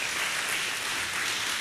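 An audience applauds steadily, a dense wash of many hands clapping at once, sustained and fairly loud throughout with no voices over it.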